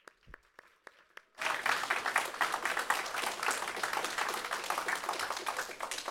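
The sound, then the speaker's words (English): A few scattered claps open, then an audience breaks into sustained applause to thank the children who performed a Christmas program: dense, steady clapping that swells suddenly and holds at a strong level to the end. “So I think it's definitely fitting and proper for us to thank them with some applause.”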